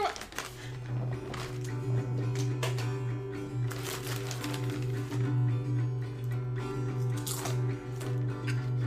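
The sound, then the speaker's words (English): Pretzel chips and hummus being chewed, with irregular crisp crunches and wet mouth sounds scattered over about nine seconds, all over a steady low hum and with no talking. “Listen to the delicious crunch of pretzel chips and hummus.”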